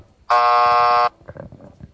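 A single loud, harsh game-show wrong-answer buzzer blares for just under a second, sounded as a self-penalty for getting a fact wrong, steady, then cuts off into quieter muffled voices and background rustle.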